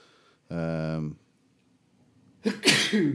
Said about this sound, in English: That's me. Sorry, you could see me about to sneeze there. Yeah, sure. I could, yeah. Try to hold it. Really, really strong hay fever